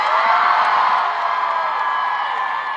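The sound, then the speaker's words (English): A crowd of about 20,000 mostly young strikers at a rally on Wurundjeri country in Australia cheers and whoops in a steady, dense roar of many voices, loud and sustained for the whole stretch with scattered higher shouts poking through. “How massive this crowd is, everyone!”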